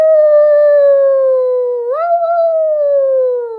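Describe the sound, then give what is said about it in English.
A single coyote howl in the desert under a risen moon, loud: one long sustained tone that dips, jumps upward mid-cry, then slowly slides lower as it fades. No one speaks. “The moon had risen in the eastern sky, and the desert howled with a coyote cry.”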